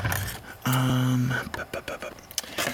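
Scissors strain against thick material, cutting from the side and close to the microphone, giving a run of irregular snipping clicks and crunches, preceded by a brief steady low hum.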